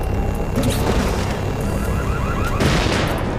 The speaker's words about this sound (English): Oh, man, if I hadn't crashed, I might have made it.